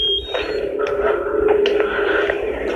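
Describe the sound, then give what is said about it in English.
A steady, high-pitched electronic tone from an EMF meter that flashes lights and beeps when it detects high EMF drones for the whole stretch, with a few faint clicks underneath and no one talking. “We basically came out here using the laser grid to try and take some photography, and we're also using this new millimeter that flashes lights and beeps when it detects high EMF.”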